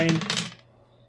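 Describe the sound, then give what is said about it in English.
A quick clatter of ten-sided dice tumbling and rattling across a hard tabletop, bright, lasting about half a second before settling into quiet. “So, oh god, I'm throwing dice everywhere.”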